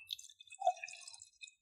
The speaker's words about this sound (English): Wine. ASMR. We're pouring wine right now.